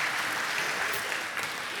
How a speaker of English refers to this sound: You guys did very well. Give yourself a round of applause up there. That's wonderful.